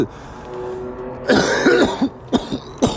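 A person coughs several times in a rough, raspy burst, followed by a few shorter hacking coughs and throat clearing, with a low background hum.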